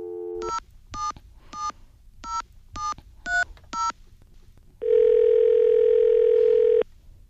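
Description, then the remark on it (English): A steady telephone dial tone, then seven short touch-tone beeps in a quick, even sequence, followed by a long sustained ringing or line tone. Clear, with no voices. “Our producer, Roman Mars, talked to Goldstein, where else, I ask you? On the phone.”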